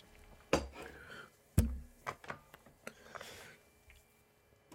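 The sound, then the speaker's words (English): Someone sips from a Rockstar energy drink can, with sharp metallic clinks and knocks: two louder hits early on, then a scatter of lighter taps and faint handling noise, with no talking. “Every time I take a sip out of this, it's like I get a bit of energy with it.”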